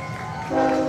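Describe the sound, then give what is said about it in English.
A train passing outside the right field wall of a ballpark during a baseball game sounds its horn, a steady, blaring chord-like tone that swells louder midway through, over a low rumbling background with no talking. “There's our second train of the game. Passing by outside the right field wall.”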